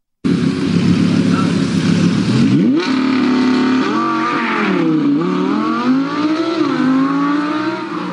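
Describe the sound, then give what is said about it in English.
An Audi R8 sports car engine idles with a low rumble, then revs hard several times, the pitch sweeping up and down in strong, loud surges. “That is what an engine is supposed to sound like, people.”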